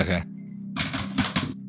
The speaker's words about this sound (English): Ooh, 15 on the die. That's a 19 total. God damn, this fucking dice tower.